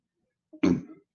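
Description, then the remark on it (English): A single short, throaty burp after drinking Mountain Dew soda erupts abruptly and trails off over about half a second, preceded by a brief low grunt, with no talking around it. “I was just burping up my Mountain Dew.”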